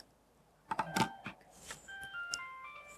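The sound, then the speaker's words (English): A phone ringtone plays as a forwarded call arrives on the phone during a call-forwarding test, a short electronic melody of sustained, shifting beeps, preceded by a few sharp clattering knocks; no one speaks. “Okay, so the call call arrives on that phone.”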